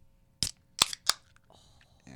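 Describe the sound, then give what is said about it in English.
A can of Breckenridge Brewery Mile High beer cracked open: three sharp, bright clicks and pops in quick succession, followed by a soft, faint fizzing hiss. “Well, maybe one of you guys can talk while we're sipping our beer.”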